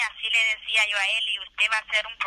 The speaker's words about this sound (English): And she's speaking to me from a federal detention center. Esta llamada proviene de una prisión federal. And periodically, a voice comes on the phone reminding me that this is a call from a detention center and we're being recorded.